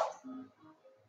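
A single quick sneeze bursts out at the start, sharp and breathy, then fades into a brief trailing exhale. It's fairly soft, with no talking around it.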